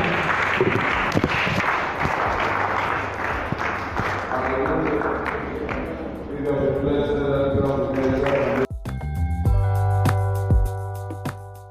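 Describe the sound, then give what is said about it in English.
A large church audience claps loudly and steadily for several seconds, applauding Jesus, a dense wash of hand claps that thins as tones and music rise and take over toward the end. “If you're clapping to Jesus, you can do that better.”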